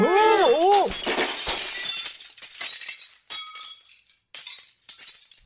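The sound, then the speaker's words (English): A loud crash of rare crystal glass figurines on a tray shattering, with bright ringing tones at the start, followed by scattered tinkling and clinking shards that trail off over several seconds. “I picked up the rare crystal figurines you ordered. They're on this tray.”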